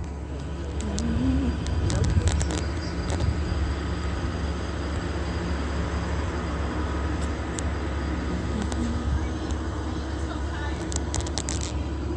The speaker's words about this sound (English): Omnitrans Crossing Path, this is bus number 1222, license 1234515. All that noise that you hear, that's a demon using a bus to maintain audible activity.